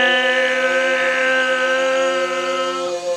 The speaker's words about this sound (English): This is the sound every MB5 should have done to it. Alright. Yeah, that's enough of that then. Alright, so that's the fucking sound of an MB5 doing a burnout.